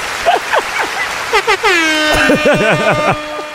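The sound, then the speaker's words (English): A loud, steady foghorn blast from the audience starts partway through and holds to the end, while excited voices whoop and shout over it, at the Line Hotel in Washington, D.C. “Hey, I told the audience no foghorns.”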